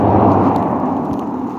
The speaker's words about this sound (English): Another car.